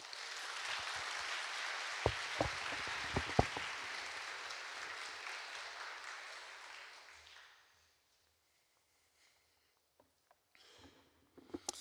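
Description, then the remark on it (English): Warm crowd applause welcoming a guest speaker to give a message fills the first several seconds, a dense steady clatter with a few sharp louder claps, then fades away into near silence before faint rustles and taps at the end. “But all that said, will you please give a very warm welcome to”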